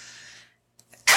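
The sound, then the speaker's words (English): A single loud, explosive sneeze at the very end, preceded by a breathy hiss of inhaled air and a couple of small catches of breath in the quiet pause before it. “I have to sneeze.”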